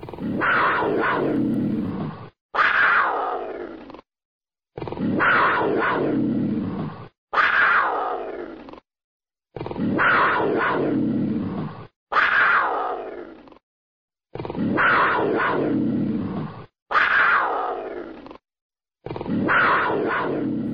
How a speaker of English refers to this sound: Hear the sound of the North American bobcat.